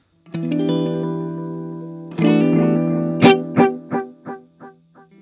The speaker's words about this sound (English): So you can hear the delay run out there and how much there's delay. There you can hear how it's just warm, but there's a lot of run out. There you almost get that echo, right? It's almost at the point where it's feedbacking.